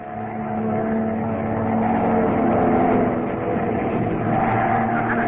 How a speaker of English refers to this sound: He's right behind us. Our only chance is to put this plane into a power dive. Here goes.